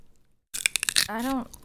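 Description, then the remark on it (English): A few sharp crunches of someone biting and chewing a stale raw carrot, followed by a short voiced hum or vocal sound. “We have this one stale carrot that I've been chewing on.”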